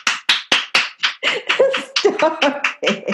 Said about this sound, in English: Can we just take a moment to give a round of applause